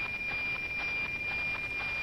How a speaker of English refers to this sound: It's very grainy right now, but it's going to sharpen up in a little bit when the signal gets pretty loud. I'm going to jump straight to that part, and I'm going to raise the volume so that you can hear what the satellite sounds like.